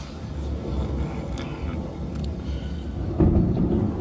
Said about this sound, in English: Yeah, we got thunder.